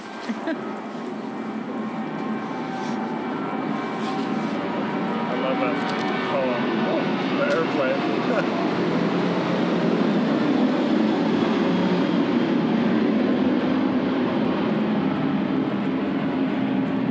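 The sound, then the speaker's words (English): A loud, steady jet engine roar fills the whole clip, slowly building in intensity as an airplane takes off, with a faint murmur of voices underneath. “The takeoff.”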